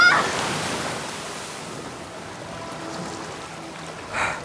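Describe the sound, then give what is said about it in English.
A steady, broad rush of floodwater pours and churns continuously as it fills a tunnel, loudest at the very start, with a short surge of splashing near the end. No voices are heard. “Yeah, but the tunnel behind us is flooded.”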